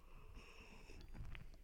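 An airy slurp as someone sips coffee, one drawn-out intake with a faint whistling edge and soft mouth noises at the end, no talking.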